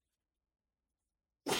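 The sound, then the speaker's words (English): After a long stretch of silence, a single sudden sneeze bursts out, a loud, breathy, hissing blast that cuts off at the end. “Bless you.”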